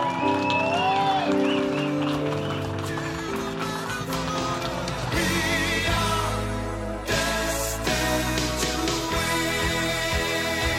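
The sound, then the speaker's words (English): An audience claps for people just baptized, a dense, continuous wash of applause mixed with loud sustained music with held chords throughout, with a brief dip around the middle before the clapping and music swell again. “Come on, give them all a hand clap of praise, would you?”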